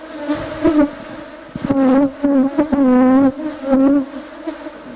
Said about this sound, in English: You can see clearly that the bees are working very serious.